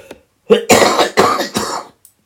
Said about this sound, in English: Excuse me, I am sorry about that. I hate that when people cough over me.